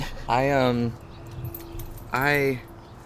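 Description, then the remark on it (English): Dogs moving around in a room, with a faint jingle like collar tags and two short, drawn-out whining sounds about two seconds apart. “Hey, out of there, dogs.”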